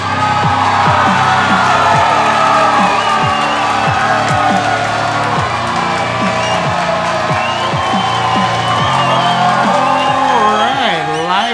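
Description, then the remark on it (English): A loud, lively crowd cheers continuously, with whoops, shouts and a dense wash of voices, and bursts of rising whistles or cries recurring throughout. “Lively crowd.”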